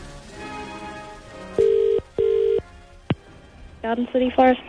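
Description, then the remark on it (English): A phone call to Garden City Forest in Barrington rings out over the line with a steady double-burst ringback tone. It stops with a sharp click as the call connects, then a voice comes on the line. “Okay, well, we'll make the call.”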